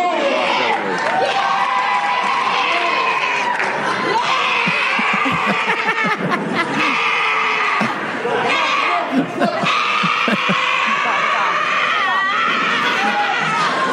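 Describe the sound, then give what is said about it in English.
A woman lets out long, strained screams while weightlifting, over a loud, continuous crowd roaring and cheering throughout. “She lifts a second time, and you wouldn't believe it. She's back to screaming.”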